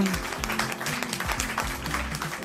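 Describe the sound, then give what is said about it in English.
Studio audience applause, a dense, steady wash of many hands clapping at an even, fairly loud level for a couple of seconds, with some low murmuring voices beneath it. “And applause die down.”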